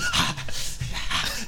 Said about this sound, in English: He doesn't vocalize. Oh, see, that's dude, the best part. All right, fine. If he don't, he's at least breathing heavy. And you hear shuffling of feet and clothes.